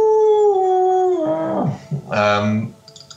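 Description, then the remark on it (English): A voice imitates wolves howling: a long, steady howl that dips in pitch, then breaks into a couple of wavering, yipping howls, fairly loud, with no other talk. “Easily you can discern that this there are wolves in the area, probably attracted by the smell of leg”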